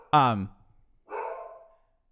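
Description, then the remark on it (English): A dog barks twice: a loud, sharp bark first, then after a short pause a softer, more drawn-out bark that trails off. “Well, let's fucking kill your dog right now.”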